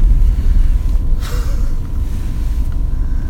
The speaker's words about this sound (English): Yeah, just go as fast as you can there, four-wheel drive truck. We're very impressed. We're all very impressed with you and your revving of your engine.